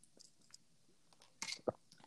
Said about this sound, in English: Okay, I'm good. I heard the gulp. I heard the water gulp.